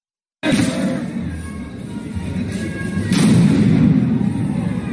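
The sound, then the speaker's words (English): A loud explosion of a thrown homemade bomb bursts in abruptly, followed by a sustained roaring rumble and a second sharp blast about three seconds later, with faint crowd noise in the background. “And here he is actually throwing the bomb on camera.”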